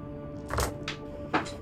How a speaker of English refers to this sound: A fistful of dice dropping them everywhere.